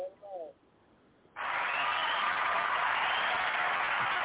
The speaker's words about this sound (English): We got the people. We got the people clapping for you. The people's clapping for you.